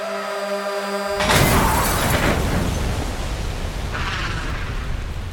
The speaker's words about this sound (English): In the blink of an eye, a semi-truck barreled through the intersection, slamming into the bus. The two vehicles crunched together, sliding into several cars and landed in a twisted, horrid heap of smoke and metal.